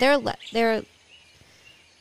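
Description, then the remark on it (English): Two loud bird calls ring out back to back at 3 a.m. with rich, sliding tones, followed by quieter, thin chirps against a hushed background. “They get like a group of more birds that join them.”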